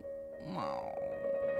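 A single short stomach growl, a low gurgling rumble that rises and falls in under a second, heard close up over a steady background hum with no talking.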